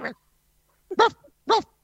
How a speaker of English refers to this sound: Can you shut that dog up? Do you hear the dog barking? I do. Yes. Little yapper.